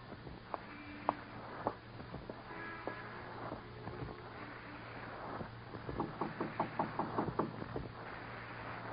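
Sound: knocking on a door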